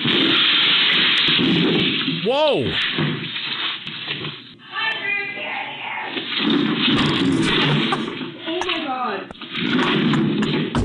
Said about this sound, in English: A video is going viral of a wild deer breaking through the window of a Minnesota butcher shop and crashing into everything trying to get out. Here's a quick clip of the mayhem.